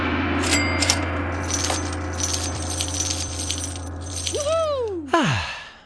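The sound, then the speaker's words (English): A big gong rings with a loud, shimmering metallic wash of overtones that sustains throughout, its tone bending and swooping in pitch near the end before a final sharp accent fades out. “Let me go and send you the big gong.”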